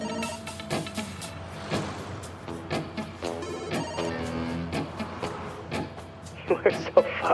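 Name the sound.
phone ringtone ringing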